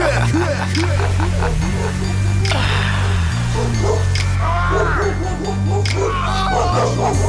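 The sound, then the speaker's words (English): A pack of hounds barks continuously at night, overlapping yips and woofs in rapid succession, loud, over a steady low droning musical bed with no talking. “I'll release the hounds on man in the night and listen to the barks and screams.”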